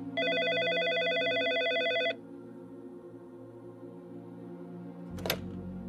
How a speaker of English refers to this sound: Later on, there was a moment of tension when the phone rang.